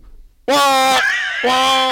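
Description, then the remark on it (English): A voice imitates a fire drill alarm with two loud, sustained buzzing tones, the first long and steady, then a brief dip before the second blares again, alone. “Fire drill. In the hallway.”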